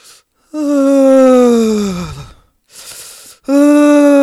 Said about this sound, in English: And then I start yawning.